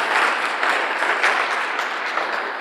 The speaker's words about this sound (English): I just like to remind you all to give a round of applause to all the volunteers who got together to make this event happen.